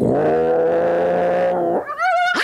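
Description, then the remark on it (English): A person imitates a cat with a long, low growling yowl that rises into a higher, wavering meow-like cry at the end, loud with no other talk. “Kitty, right?”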